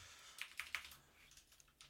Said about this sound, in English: Sorry, I'm typing a message out. Give me, like, 30 seconds.